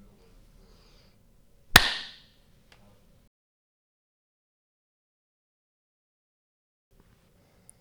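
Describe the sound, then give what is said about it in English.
A single sharp hand clap, made as an edit marker in a recording, rings out loud and bright, with a brief decaying tail, followed by several seconds of near silence; low background murmur sits before and after. “When I'm going to clap, we're going to stop talking, and then that's where you edit out, all right?”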